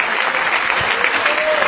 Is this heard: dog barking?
no